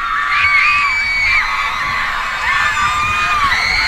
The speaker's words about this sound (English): What? Are you kidding me? That's insane. Are you sure that's not a recording of all the girls screaming